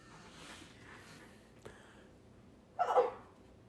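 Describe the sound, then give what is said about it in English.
One short, sharp sneeze bursts out near the end, fairly loud against otherwise quiet background noise, with a faint click heard a moment earlier. “Bless you.”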